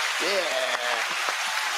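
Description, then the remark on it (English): A crowd applauds steadily, a dense wash of clapping, with a voice briefly calling out or cheering over it near the start, welcoming two heads of the amplifier maker Blackstar Amplification. “A round of applause, please.”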